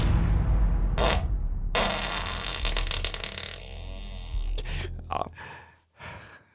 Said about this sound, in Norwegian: Kan du fise noe for oss i dag?